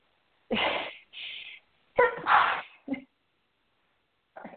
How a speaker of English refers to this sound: Okay, wait a minute. I got to sneeze, guys.